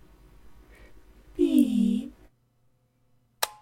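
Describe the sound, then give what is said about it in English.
A low electronic tone slides downward in pitch for under a second, a mournful falling beep, followed after a pause by a sharp click and a brief higher blip. “SFX. Sad beep.”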